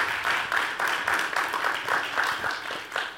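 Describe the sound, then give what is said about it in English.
A crowd claps steadily for several seconds as a woman comes up to the front to express gratitude, the many overlapping hand claps forming a dense, moderately loud wash of applause with no talking. “Y'all give a hand clap when she come on up here.”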